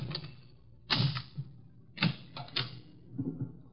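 Crisp metallic clicks and rattles as a skeleton key works at the lock of a locked door, several sharp snaps spaced irregularly with softer fumbling between them, no voices.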